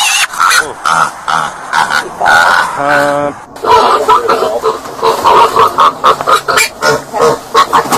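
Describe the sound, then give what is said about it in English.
Loud, frantic squealing of a loose pig being captured by troopers after running across a highway in southern Ohio near Cincinnati, in a rapid string of harsh, high-pitched shrieks and grunting bursts, continuing almost without pause for several seconds. “If you have ever tried to handle a pig who did not want to do what you wanted him to do, you know what that sounds like.”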